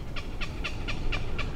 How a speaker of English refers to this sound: Those are the young herons that are begging to the parents. So it's like a baby crying.